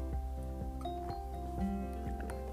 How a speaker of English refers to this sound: Let me get some of this water, one moment.